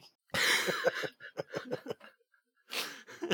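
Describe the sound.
A person imitates an exaggerated smoker's cough: a harsh, loud hacking burst, a string of rhythmic raspy coughs, a brief pause, then another rough cough.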